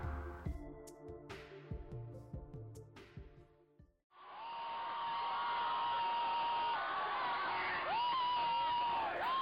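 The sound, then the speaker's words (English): A few seconds of band-like music with steady beats cut to a loud, sustained crowd of Davis High School (DHS) students cheering and whooping for their football team at a game, with shouts and whistles rising above the roar. “DHS students cheer for the football team at last Friday's game.”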